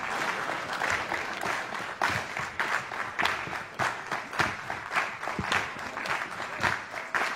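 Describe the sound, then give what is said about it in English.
An audience claps along together in a steady, fairly quick rhythm as they are asked to speed up their clapping, sharp unified beats standing out over a dense wash of scattered clapping and room noise. “You need to speed up your clapping.”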